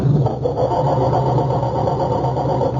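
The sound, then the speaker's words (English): A car engine cranks with a steady, labored churning that never catches and settles into running, because the coil wire to the distributor has been removed. It is loud, continuing for a few seconds with no voices. “It sounds like our culprits are having trouble starting Dennis's car.”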